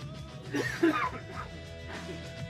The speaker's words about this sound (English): when I'm coughing, you could talk instead of just silence when I'm dying.